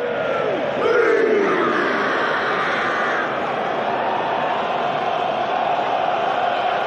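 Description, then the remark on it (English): A huge stadium crowd roars continuously, a dense wall of cheering and shouting that swamps the chanted haka beneath it, with a surge of louder noise early on before settling into a sustained din. “Listen to that crowd drowning them out.”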